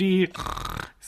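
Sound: voice imitating snoring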